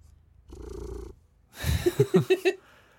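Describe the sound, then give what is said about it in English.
A pet emotional support cat purrs right up against the microphone, a low rumbling hum followed by several loud, rhythmic pulses of breathy purring, with no one speaking. “If you happen to hear that Lugosi decided to join us today, he's being served. Get him real close.”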